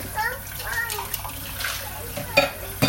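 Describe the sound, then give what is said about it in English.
Water runs steadily into a kettle, a continuous pouring hiss with faint voices in the background and a couple of sharp clunks near the end. “That's a good thing that we're getting our kettle ready.”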